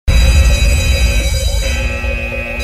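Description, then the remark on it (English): A loud electronic alarm sound effect, used as a spoiler alarm, blares steadily for a few seconds, layered tones pulsing and wavering over a dense, buzzing low rumble, with no voices. “This will be full of spoilers. In come the spoiler alarm.”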